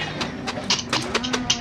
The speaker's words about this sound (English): Stop those men from loading the cattle!